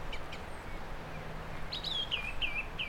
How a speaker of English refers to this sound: Another song thrush. Actually see him straight away, he's gleaming at the top of a tree, white breast.